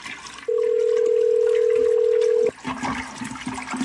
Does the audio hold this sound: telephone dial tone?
yes